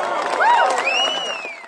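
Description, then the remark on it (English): A large crowd cheers and applauds in a loud, dense roar, with a few sharp rising whistles cutting through before the noise eases slightly at the end. The cheers and applause drown out the speaker. “Unlike McKee, the only thing drowning … out were cheers and applause.”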